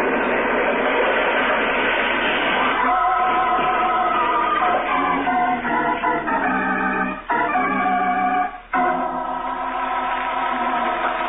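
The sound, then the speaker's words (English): A train wreck on a trestle after a detonator explosion: a loud, continuous roar of crashing and grinding metal, with shrill screeching tones rising in the second half and two brief dips near the end, no voices. “driving eastward through the night, far from the scene of the train wreck”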